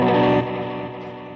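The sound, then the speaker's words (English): A loud, distorted electric guitar chord rings out through heavy effects, its rich harmonic buzz easing after a moment and sustaining with a reverberant tail. No one speaks. “Guitar still works.”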